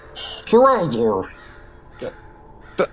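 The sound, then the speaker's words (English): A raven gives a loud, harsh caw that breaks into a second rasping call, followed by quiet background and a couple of brief faint knocks. “Did you come with that raven?”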